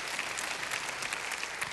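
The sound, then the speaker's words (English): An audience claps steadily for young people, widows and divorced mothers, many hands creating a dense, even patter with no voices over it, sustained at a moderate level throughout. “Don't, matter of fact, let's give them a good hand clap, those that might be online right now.”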